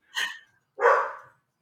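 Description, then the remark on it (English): Two sharp dog barks, a higher, brighter one followed after a short pause by a deeper, fuller bark, clear with no talking. “if I put him in the backyard, he will just stand out there and bark too.”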